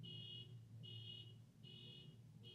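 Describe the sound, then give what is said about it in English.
An alarm beeps in a steady repeating pattern, four high-pitched tones about half a second each with short gaps, over a low constant hum in the background. “Oh, somebody's alarm's going off.”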